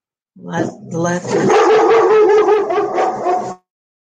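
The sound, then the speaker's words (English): Dogs bark loudly, a few sharp yips opening into about three seconds of continuous, overlapping barking with a howling, whining edge before it suddenly stops. “Be guided by my dogs. Sorry about that.”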